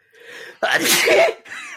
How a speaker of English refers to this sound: Okay, I tried to hold that sneeze in. I almost got to the mute button. That didn't happen. Did any of you guys get sprayed?